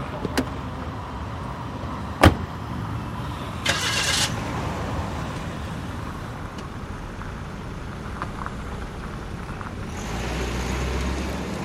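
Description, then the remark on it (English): A taxi's engine turns over and settles into a steady running rumble, with a couple of sharp clicks and a brief whirring burst like a power window, then the engine swells as the taxi pulls away. “Oh, here's a taxi.”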